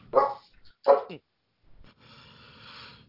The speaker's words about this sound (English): That's the worst werewolf howl I ever heard.